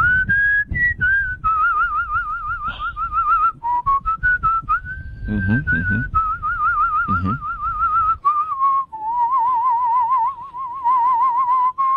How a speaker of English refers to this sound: No, but actually I can whistle several different ways, including in as well as out. Stop. Oh, let's hear a little of that. Let's hear a little in whistling. Well, see if you can hear the difference.